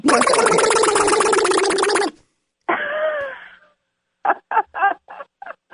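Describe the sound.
A voice does an impression of Donald Duck in a blender: a loud, gargling, churning squawk for two seconds, a shorter warbling cry, then a rapid string of choppy quack-like bursts.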